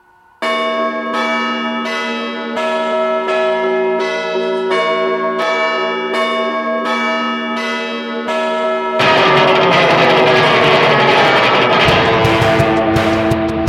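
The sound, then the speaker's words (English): The bell of London's Big Ben clock chimes in a steady run of about a dozen ringing, overlapping strokes, followed by a dense, loud wash of sound that drowns out the individual tones. “So anyway, here's a wake-up call from London's most enormous clock.”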